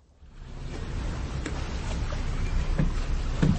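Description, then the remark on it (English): A small sailboat creaks softly as it rocks on the water, with a steady wash of lapping water and a few sharp wooden knocks near the end. “Is this the boat you were sailing last Sunday night?”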